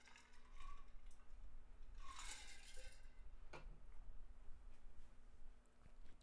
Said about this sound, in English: But sorry, you hear my drink clanking. Let me just take a sip. Cheers.